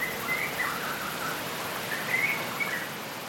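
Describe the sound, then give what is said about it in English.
Faint birds chirp in a few short bursts over a steady, hissing outdoor ambience, like light rain or wind. No one speaks. “Wind blowing through the trees, rainfall dripping, insects buzzing, birds chirping.”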